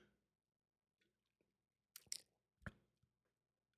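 A quick, quiet sip from a drink: a few soft mouth clicks and slurping sounds, then a low gulp, with silence around them and no talking.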